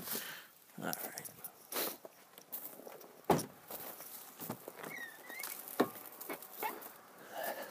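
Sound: footsteps crunching on snow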